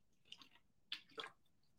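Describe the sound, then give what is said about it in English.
Quiet gulping and swallowing sounds from a quick sip of water, a few short wet squishes spaced out over a couple of seconds, with no talking. “Quick drink of water.”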